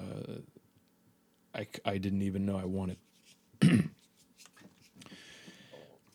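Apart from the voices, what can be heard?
burping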